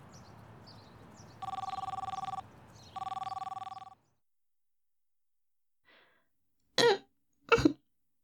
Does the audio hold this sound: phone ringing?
yes